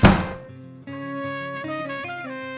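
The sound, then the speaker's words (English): A door is slammed shut by someone walking out, with one loud, heavy thud that rumbles and fades over half a second, then steady layered music with shifting notes begins and carries on. “I don't give a damn, I say, slamming the door behind me.”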